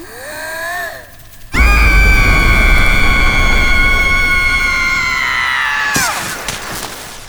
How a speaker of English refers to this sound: is going to use her supersonic scream.